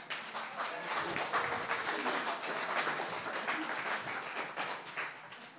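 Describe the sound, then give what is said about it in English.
An audience breaks into a round of applause for Adam, dense overlapping clapping that stays steady and fairly loud for several seconds, with a few murmured voices mixed in. “So give Adam a round of applause.”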